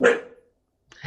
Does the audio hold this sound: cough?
no